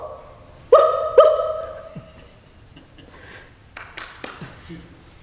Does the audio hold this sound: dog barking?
yes